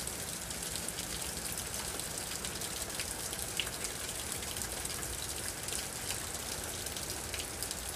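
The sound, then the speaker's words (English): Steady rain falls continuously, a dense even hiss with scattered droplet patters, moderately loud, with no voices. “The wonderful rain connecting the heavens and the earth.”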